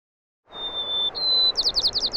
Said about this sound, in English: Then I'll come back a day or two later and with all my recording equipment, and you kind of just have to sneak up on them and try and get a good angle, get the bird singing right at you to get a really nice recording.